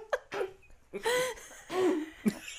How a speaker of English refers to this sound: I'm choking on that. Hold on.